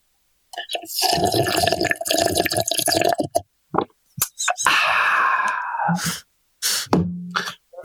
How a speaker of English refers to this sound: Allow me to take a big old alcoholic slurp out of the pint glass here.